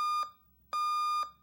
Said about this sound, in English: Morning. Cell phone alarm clock, made of plastic, wakes you up.